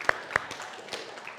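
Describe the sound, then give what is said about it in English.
A couple of sharp, loud claps ring out, followed by sparse, fainter claps over a low background murmur, as a church audience applauds a man's wife, like applause just starting or trailing off. “Clap for my wife.”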